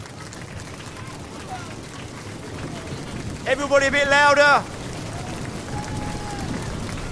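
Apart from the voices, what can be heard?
audience clapping hands together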